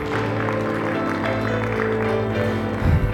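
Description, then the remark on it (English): A church audience claps in praise during a service, a steady, dense, continuous wash of applause, mixed with sustained organ-like music chords playing underneath throughout. “Give the Lord a hand clap of praise tonight, church.”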